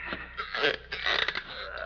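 An old chair creaks and groans for about two seconds, a fairly loud strained wooden squeak that rises and wavers in uneven bursts, with no voices.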